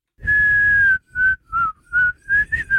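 A clear whistled melody played in reverse, twice: one long sustained note followed by a quick series of five or six shorter notes, with slightly odd, backward-sounding phrasing.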